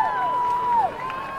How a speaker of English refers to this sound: They're taking it down now, as you can hear the people cheering.